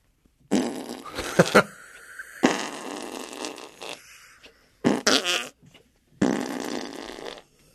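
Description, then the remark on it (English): Four wet, sputtering armpit farts made by a grown man with a hand and armpit, each a loud burst about a second long, separated by short pauses, with no talking. “It's a grown man doing armpit farts.”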